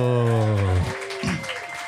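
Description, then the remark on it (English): A short burst of applause from a small group welcoming a guest, dense and steady, with a drawn-out held voice ringing over the first half before the clapping carries on alone. “Better than yeah, yeah, we can clap”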